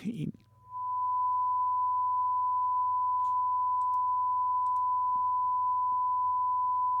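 A television test card tone: one steady, high-pitched beep held unbroken for several seconds, loud and clean over a faint low hum, after a brief burst of noise at the start.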